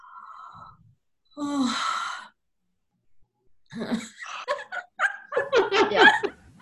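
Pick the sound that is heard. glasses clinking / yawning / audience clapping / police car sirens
yawning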